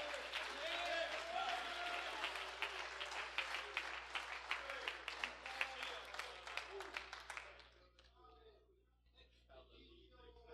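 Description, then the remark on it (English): An audience claps their hands to receive a word from the Lord, in a dense, sustained burst of applause that fades out after about eight seconds, leaving scattered quieter noises. “Why don't we clap our hands and receive that as a word from the Lord?”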